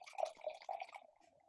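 Wine from a just-opened 2013 bottle, fermented in stainless steel tanks, glugs and splashes into a glass for about a second, the bubbly gurgle tapering off into a faint trickle at the end, with no voices.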